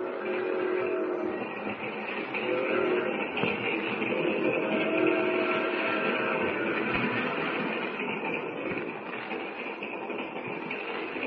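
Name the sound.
train rolling on rails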